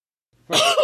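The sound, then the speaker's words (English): A single loud cough bursts out after a moment of silence, harsh and raspy, lasting about half a second with no talking around it. “That was my one cough.”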